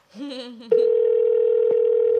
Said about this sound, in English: Pick up the phone, baby. Pick up the phone.